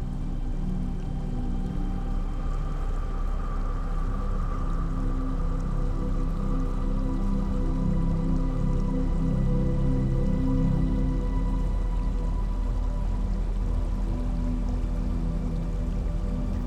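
Steady trickling water runs continuously with a soft, bubbling texture and a low hum underneath, with no voices or other sounds breaking through.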